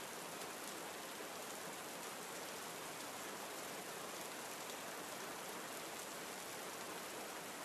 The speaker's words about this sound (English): The brook on your left begins to widen into a swiftly moving stream, running quickly downhill as you approach a lookout. Miniature waterfalls tumble and gurgle as you pass by, the rocks smoothed beneath their constant beat.